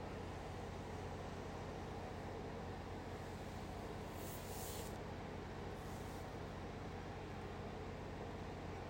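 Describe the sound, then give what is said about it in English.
A long, steady breath pushed out through puffed balloon lips during a breathing exercise, an even rush of air like a soft hiss that holds for several seconds with no talking. “Now, exhale through balloon lips.”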